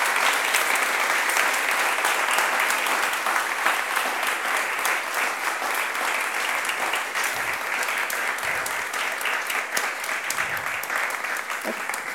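Sustained applause from an audience at the end of an onstage conversation, before audience questions, fills the whole stretch, a dense, steady patter of many hands clapping at even loudness with no talking over it.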